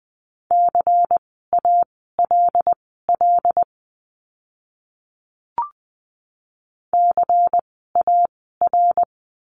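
Steady mid-pitched Morse code beeps at 20 words per minute spelling out practice words for the letter C, short and long tones in clustered letter groups, then a pause with a faint click before a second run of beeps.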